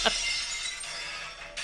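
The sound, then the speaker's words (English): Someone imitates glass breaking with their mouth: a sharp initial crack, then a steady, hissing, crackly spray lasting under two seconds, fairly loud, with no talking. “Can you guys make the glass breaking sound?”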